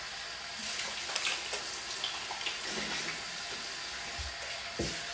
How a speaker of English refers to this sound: Put all the soap in my mouth now. Just wash it off with water.